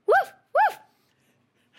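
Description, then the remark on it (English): Two quick, loud barks from a dog named Carmelo, about half a second apart, followed by near silence before another sound starts right at the end. “Okay, bark 2 times for yes and 1 time for no.”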